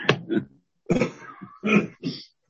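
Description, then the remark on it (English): A short fit of loud coughing: several harsh, rough bursts in quick succession with brief pauses between, like someone hacking and clearing their throat. “No coughing in this room.”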